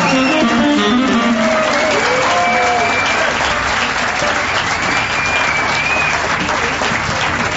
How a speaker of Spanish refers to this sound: Señoras, señores, extendemos el aplauso para recibir a la dorada trompeta de inglés.